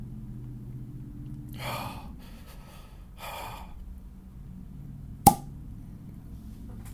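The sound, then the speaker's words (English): A cork is worked out of a beer bottle: two bursts of scraping, creaking strain, then a single sharp, loud pop as it comes free, with no talking. “Let's get this cork open.”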